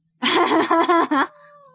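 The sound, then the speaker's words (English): A golden retriever puppy whimpers in a few quick, wavering, high-pitched whines over about a second, then trails off into a faint lingering tone. “Lovely little dog sounds there. Yeah, I love his puppy sound.”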